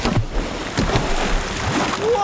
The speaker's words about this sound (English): Whoa, what was that? Look, look! There's a group of humpback whales breaching, jumping up and out of the water!